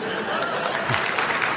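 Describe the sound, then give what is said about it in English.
An audience applauds a quotation spoken in Italian before it is translated: a steady, dense wash of many hands clapping at once, holding an even, fairly loud level throughout with no single claps standing out. “As does applauding them before they've been translated.”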